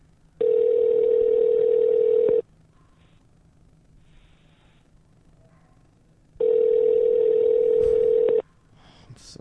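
Two long, steady electronic ringback tones, each about two seconds, separated by a quiet pause with faint background noise, as heard on an outgoing phone call waiting to connect.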